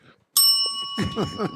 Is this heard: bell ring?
yes